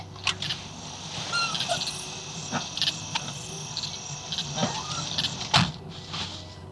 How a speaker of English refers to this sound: The vegetation is still unnaturally large, even in winter, but the air is full of birds and insects now.